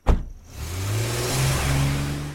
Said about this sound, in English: We just put it in my car. Just driving away.